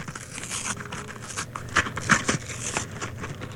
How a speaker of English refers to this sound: Okay, I'm tearing the paper there. Now, even though, oh gosh, I opened the wrong end. Okay, now I tore the paper off, and now I have to open some more.